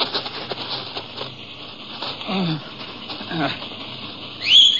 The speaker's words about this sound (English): And in response to the whistle, the horses trotted up to him.